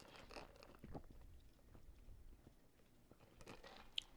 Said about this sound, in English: Hold on. Iced coffee. Sip.